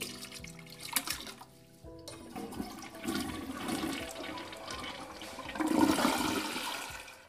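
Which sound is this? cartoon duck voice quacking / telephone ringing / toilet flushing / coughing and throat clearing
toilet flushing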